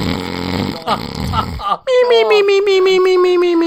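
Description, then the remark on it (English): A voice imitates snoring: a loud, rough, rattling throaty rasp, a brief pause, then a long wavering whine that slowly slides downward in pitch. “That's the best snoring noise ever.”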